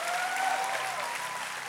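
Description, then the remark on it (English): A church audience claps their hands in a dense, steady burst of applause during an evening service, sustained at an even loudness with no voices standing out. “Come on, clap your hands one more time in this house tonight.”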